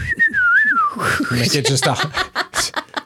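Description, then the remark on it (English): A person whistles a short, wavering call of a few rising and falling notes, clear, then breaks off into a burst of laughter from one or more people. “I need to figure out the fucking whistle, because I'm just like...”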